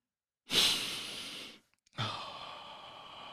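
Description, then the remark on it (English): A deep breath: a long airy inhale, a brief pause, then a slow, steady exhale, with no talking. “Are you still breathing in and out?”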